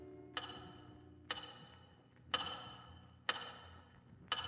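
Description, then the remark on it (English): A big clock ticks slowly and steadily, about once a second, each sharp, resonant tick trailing off over a faint low hum. Five ticks in all, with no voices. “Finally, light a cigarette, sink down in your cot, and stare through the windows at the big clock.”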